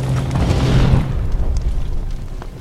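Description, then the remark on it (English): The front door of a burning house is kicked in by firefighters and smashed to splinters: one heavy, booming crash with a deep low rumble that swells briefly, then fades into a lingering roar. “The front door is kicked into splinters, creating a mini backdraft in the room.”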